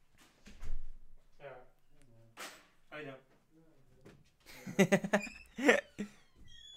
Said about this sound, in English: There go the doors.